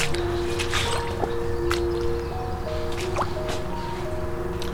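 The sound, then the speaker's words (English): Wet, sucking squelches of feet moving through swampy mud at Edge Lake Park on May 1st, several irregular squishes and drips, over a steady background of faint tonal humming and buzzing. “As you might be able to hear, I'm in a very muddy area. Almost a swampy.”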